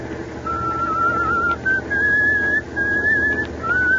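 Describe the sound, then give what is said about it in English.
A truck driver whistles a slow tune while driving in thickening fog on Highway 9W in eastern Pennsylvania with 10 tons of nitro in the back: a series of long held notes that step up and down in pitch, over a steady low rumble in the background. “For the love of Mike, Larry, if you got a whistle, at least change that tune.”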